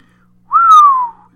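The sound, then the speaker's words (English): A single clear, appreciative human whistle, loud, held for under a second as its pitch glides slowly downward, with no talking around it. “whistled appreciatively.”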